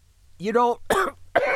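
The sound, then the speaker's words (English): A man, a gunner jogging to keep up, coughs three times in quick succession: a hoarse, voiced hack followed by two sharp, harsh bursts, fairly loud, with no talking around them. “The gunner had to jog a little to keep up, and it got him coughing again.”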